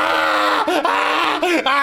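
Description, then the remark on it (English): A player yells at the enemies with a loud, raw scream held for about two seconds, strained, its pitch wavering and briefly breaking a couple of times like a fierce battle cry. “Just you're screaming right now.”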